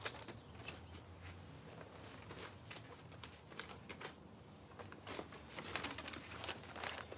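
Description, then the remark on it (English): A waterlogged sheet of paper is handled, giving a steady stream of soft, wet crinkles and rustles with brief sharper crackles, and no one speaks. “Before we leave Brett's and the idea of snow and ice, I need another waterlogged piece of paper here.”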